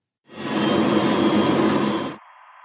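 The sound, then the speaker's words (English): In an active noise control demonstration, a steady, loud roar of machinery noise with faint humming tones runs for about two seconds, then abruptly drops to a much quieter, thinner hiss as the inverse of the noise is faded in on top, cancelling it out. “you'll first of all hear this noise, which is all the kind of machinery going on, and then I fade in the inverse of that noise on top of the original, and you'll hear it, how it cancels out the original sound and virtually gets rid of it.”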